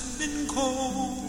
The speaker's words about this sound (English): It's recording from 75. Yeah, you can hear the hiss. Love that sound. Just listen to that. Slide guitar.